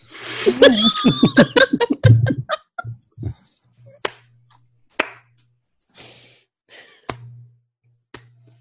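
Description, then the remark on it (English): A burst of laughter fades into a slow clap: five or six sharp, single hand claps spaced about a second apart, with a faint low hum running underneath. “That was a slow clap.”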